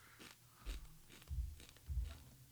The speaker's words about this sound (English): Crunch and munch.